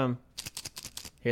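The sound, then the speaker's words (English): Probiotic pills bought at a store rattle in a bottle with a rapid series of about eight bright, clicky shakes, bracketed by a voice speaking briefly before and after. “the Foley was of pills in a bottle being pills in a bottle”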